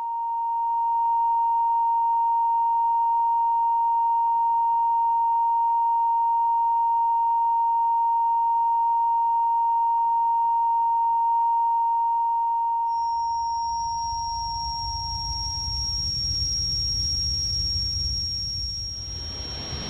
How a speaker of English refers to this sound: With it, you hear constant noise, usually a ringing or a buzz. But people can experience lots of different sounds.